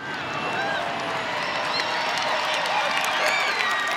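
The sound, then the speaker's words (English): Steady, dense applause from a large crowd for writer and activist Dr. Lenaida Warjack, many hands clapping at once with a few voices cheering through it, loud and unbroken for the whole stretch. “I see lots of hands clapping. Yes. Yes. Massive applause.”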